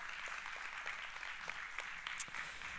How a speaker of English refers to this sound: So let's go ahead and give them a round of applause.